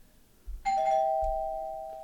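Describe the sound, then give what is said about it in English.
A bell is struck once to mark the end of the session, with a soft thud, and rings out with a clear, bright tone that slowly fades, standing alone without any voices. “And with that's the bell. We got to go.”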